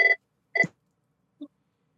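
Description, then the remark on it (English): A phone rings in the back in short electronic bursts: two brief buzzy tones about half a second apart, followed by a faint, shorter blip, with no one talking. “His fucking phone's ringing in the back.”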